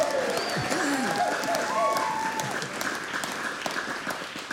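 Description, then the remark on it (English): An audience breaks into steady applause for a contestant who answered a question correctly, a dense crackle of many hands clapping throughout, with a few whoops and voices rising over it before the clapping thins slightly toward the end. “Big round of applause.”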